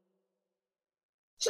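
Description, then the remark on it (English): After near silence, one sudden, loud, breathy sneeze bursts out at the very end, sharp. “Excuse me. Bless you.”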